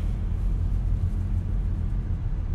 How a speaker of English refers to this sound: It's actually a truck stop, a truck, like a big truck stop place. So I'm just right here chilling.